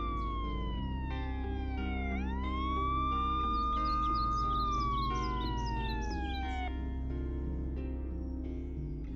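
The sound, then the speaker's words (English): A police siren wails in the distance, its pitch dipping then rising and slowly falling again, over a steady low rumble, with faint chirping blips mixed in. “I grunted in response as I heard the distant sirens.”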